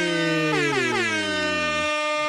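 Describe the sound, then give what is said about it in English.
A loud, blaring air horn sounds in one sustained blast that wavers and bends in pitch before cutting off, piercing with no one talking. “Air horns for Jason Jones just because.”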